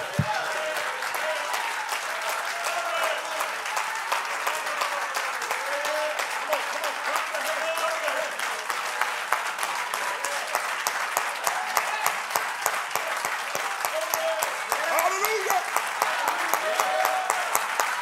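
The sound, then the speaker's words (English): A church audience claps their hands in praise to the Lord steadily throughout, a dense wash of overlapping hand claps with some sharper individual hits, while voices murmur and call out underneath. “Because when I say clap your hands unto the Lord, everybody in the church should be clapping their hands unto the Lord.”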